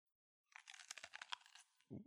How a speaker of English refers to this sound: Dang, that was 3D. Ooh, very well done. Very well done. 4D pepper crunch.